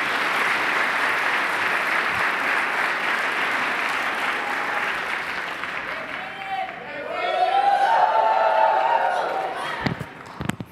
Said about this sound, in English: So give a round of applause for the elected president.